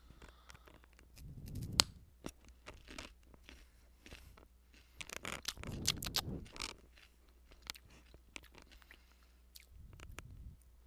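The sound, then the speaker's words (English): Someone chews food with wet, crunchy bites, producing sharp clicks and squishy mouth sounds in irregular bursts with pauses between, fairly quiet overall and with no talking. “If you don't like when people chew and you hear that noise and it makes you like cringe, like sorry, but here you go.”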